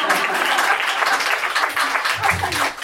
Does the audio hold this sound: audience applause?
yes